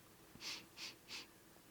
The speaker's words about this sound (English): Those are my sniffles of tears.